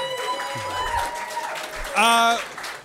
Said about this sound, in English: ladies and gentlemen, that's the end of this show. I hope you appreciate it. Give a big round of applause for all the people that submitted.